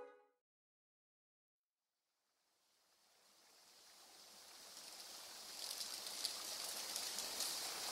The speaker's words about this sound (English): It's a warm, breezy day, and the Sugar River turns to rapids beneath the bridge.